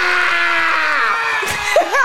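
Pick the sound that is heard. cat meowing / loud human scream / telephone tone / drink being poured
loud human scream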